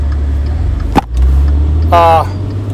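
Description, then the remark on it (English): A car engine rumbles steadily in traffic during a near-miss in which a driver almost hits the car in front, with a brief sharp knock partway through, followed by a short, blaring horn-like honk before the low drone carries on. “This lady almost killed these people in this car in front of me.”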